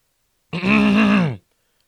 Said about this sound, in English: You want to clear your throat a little bit more? Just to get it all out for the rest of the episode?